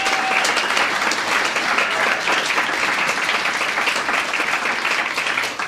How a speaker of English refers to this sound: I just want to mention this and we'll give them a round of applause.